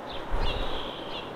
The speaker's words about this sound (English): sparrow calls, wrens, and blackbirds, and I don't know what other else kind of birds, but God cares so much about those birds, the birds that are in these trees making noises at us